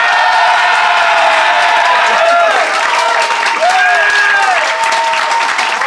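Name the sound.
audience applause and cheering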